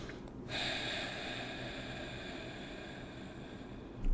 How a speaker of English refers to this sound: And do that for like 5 to 6 rounds of deep breathing and getting that energy center going. And then breathe deeply regular, like regular breathe, like.